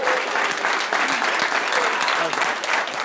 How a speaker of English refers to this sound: Let's have a round of applause for everybody here